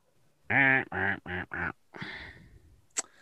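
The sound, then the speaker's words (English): A person imitates a duck with four loud, nasal quacks in quick succession, followed by a rougher, fading quack and a brief sharp click at the end. “if everyone calls you a duck, would you quack?”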